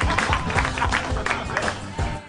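Applause at a live Harmontown show in Hollywood, California, as Dan Harmon is introduced: a dense, steady patter of clapping hands with excited voices and crowd noise mixed in, fairly loud throughout.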